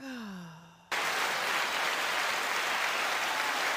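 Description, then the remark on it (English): A brief falling, sigh-like vocal tone cuts off abruptly into a loud, dense burst of crowd applause from an applause sound effect that holds steady for about three seconds with no talking over it. “And I got my applause to stick this time, guys.”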